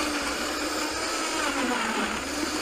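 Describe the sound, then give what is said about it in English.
A blender runs steadily at high speed, a loud whirring roar with a gritty churning texture as it blends pineapple and coconut water, no voices present. “So you sort of just put the pine right in your blender.”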